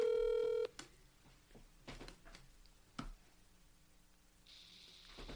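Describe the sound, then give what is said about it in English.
A loud telephone tone cuts off, followed by a few scattered clicks and taps of dialing, then a steady electronic ringing tone sounds near the end as a call is placed to a guest. No one speaks. “we thought it made sense we want to give one of them a call”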